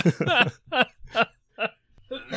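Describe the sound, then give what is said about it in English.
A string of five or six short, throaty coughs comes in a loose, uneven rhythm, each a voiced burst with a laugh-like edge, fairly loud, and no talking. “Oh, you got me good with that one. I had to cough.”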